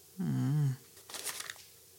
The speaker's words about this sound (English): Might be my refrigerator. Because everything cut off. Oh, yeah. Everything's rebooting.